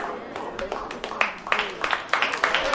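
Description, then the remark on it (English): A slow, steady scatter of sharp hand claps from an audience during a sermon, loosely spaced rather than in unison, continuing under a man's preaching voice throughout. “I'm not preaching for hand clap, so that slow clap start, it don't bother me.”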